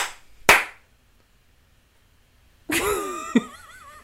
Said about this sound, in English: Two slaps.